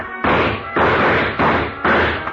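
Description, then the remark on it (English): A chair being knocked over: four loud, heavy clattering bangs in steady succession, each a broad crashing burst, with no voices. “I knocked over a chair to give him something to shoot at.”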